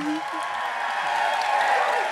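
An audience in the San Francisco Bay Area applauds a performer being introduced, with a steady, dense wash of clapping that holds for about two seconds and swells slightly toward the end, with some faint cheering mixed in.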